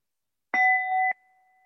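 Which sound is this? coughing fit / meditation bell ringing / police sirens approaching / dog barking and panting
meditation bell ringing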